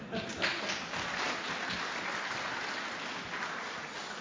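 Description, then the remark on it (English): A crowd claps steadily for several seconds after a Bible reading from the Book of Esther, a dense, even patter of many hands at a moderate level with no pauses, and a few voices murmur faintly underneath. “You don't have to clap for me.”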